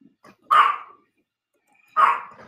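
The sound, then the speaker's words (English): A dog named Daisy barks twice after hearing a bell, two sharp, loud barks about a second and a half apart, with a faint short sound just before the first. No one speaks. “She heard the bell. She's Pavlov's dog.”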